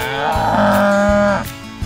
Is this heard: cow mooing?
yes